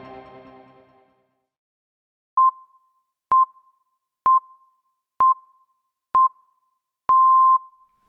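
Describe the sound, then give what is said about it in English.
Five short, steady beeps at one-second intervals, followed by a longer final tone, all at the same mid-high pitch, like time-signal pips. A faint trace of voice fades out just before them. “Line that up after the next set of beeps. Pips. Beeps.”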